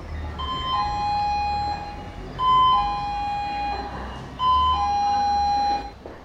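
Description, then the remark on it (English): A tacky electronic doorbell at a luxury stationery company in Africa chimes three times in a row, each ring a short higher note dropping to a longer, slightly lower tone, over a steady low background hum. “There are some companies you just shouldn't judge by the sound of their doorbell.”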